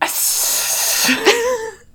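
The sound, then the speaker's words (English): A voice imitates a basilisk's snake scream: a long, breathy hiss lasting over a second, then a short, strained, wavering squeal that rises and falls before cutting off. “What do we think a snake scream sounds like?”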